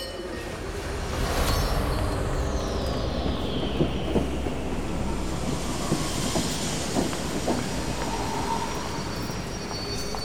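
A train to Edinburgh rumbles on its rails, a high metallic squeal of brakes gliding downward as it slows, with scattered wheel clacks over a steady, heavy roar. No one speaks.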